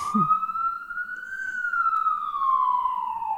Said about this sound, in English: And yeah, that shout out to the siren. Shout out to the streets of Brooklyn. Let him pass.